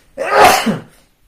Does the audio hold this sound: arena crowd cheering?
no